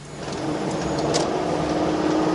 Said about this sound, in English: The roads are narrow and windy curves, so it's not easy to drive the bus.